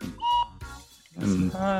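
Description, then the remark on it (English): A tuned whistle, one of a set marked with note letters and filled up to the notes, sounds a short, steady, clear note, then after a brief pause a louder, fuller whistle note that holds and shifts slightly in pitch. No talking. “they actually have letters, so the notes, so you fill them up to the notes.”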